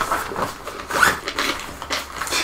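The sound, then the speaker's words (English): A zipper on a bag's front pocket being pulled open in a few quick, rasping tugs to get a white charger out, fairly loud, with no talking over it. “In that front zipper, can you grab me that white charger out of there?”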